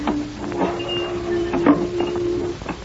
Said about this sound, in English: Right. Now, just let me open this car trunk.